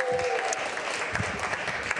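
A crowd claps steadily, a dense wash of many hands applauding at moderate volume throughout, with a faint tonal whistle briefly audible early on.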